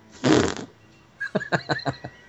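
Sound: fart sound effect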